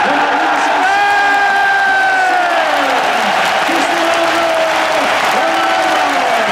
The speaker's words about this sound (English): The crowd that night gave him a standing ovation that lasted beyond the referee's whistle to start the match. Welcome back!